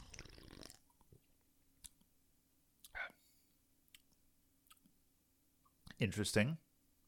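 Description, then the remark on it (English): Wet mouth sounds of someone sipping an artificial grape-flavored, zero-sugar drink and swallowing, with a slurp at the start, a brief gulp midway and a louder sip-and-swallow near the end amid quiet pauses. “Okay, let's go for the second sip here.”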